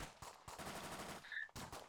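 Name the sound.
gunfire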